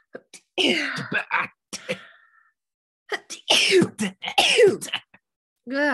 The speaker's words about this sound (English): Sneeze. Don't sneeze.